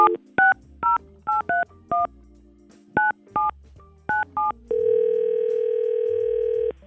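A phone number being dialed for a call on the Y100 radio morning show: about a dozen crisp touch-tone beeps in quick, uneven bursts, then a steady electronic line tone that holds to the end. No one speaks.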